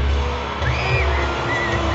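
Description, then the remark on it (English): A large arena crowd in Atlanta roars and cheers steadily in an ovation for Roman Reigns, with a dense wash of voices and a few rising whoops cutting through the loud, continuous noise. “he is the one you can hear throughout the entire arena cheering”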